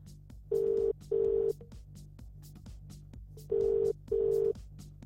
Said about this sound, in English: Let's give her a call. We'll see if she answers the phone. It'll be a no.